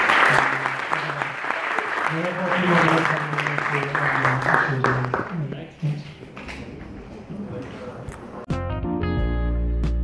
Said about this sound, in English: Great, so with that, I think we're at the end of this panel. I definitely want to thank all of you for being experts and giving us all your opinion. And please, a round of applause for all of us. For the panel.